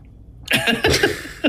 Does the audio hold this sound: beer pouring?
no